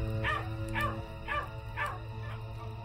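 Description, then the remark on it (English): A dog gives five short, rough growling yelps in a steady rhythm, about half a second apart, moderately loud over a low constant hum, with no one speaking. “By now, I lent actual credence to her sighs, so that whenever she'd start growling, I would move to a new room or even pack her up in my car and drive off into town.”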